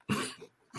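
A single sharp sneeze bursts out abruptly, a loud explosive blast with a breathy, hissing tail, followed by a short fainter huff. No one speaks over it.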